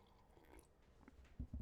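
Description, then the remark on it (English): Someone quietly sips hot coffee, faint slurping followed by two soft, low gulps near the end, with no talking. “let me take a sip of my coffee”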